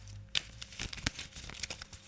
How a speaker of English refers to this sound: So I'm going to draw 7 generality cards. Let's just give them a bit of a shuffle.